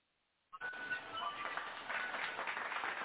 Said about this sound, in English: Let me throw them claps on that.